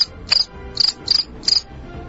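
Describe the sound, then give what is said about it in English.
Crickets chirp in short, evenly spaced bursts of high trilling, about four pulses over two seconds, steady against a quiet night backdrop with no one speaking. “I think it's crickets.”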